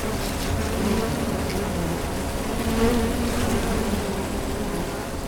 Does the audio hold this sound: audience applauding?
no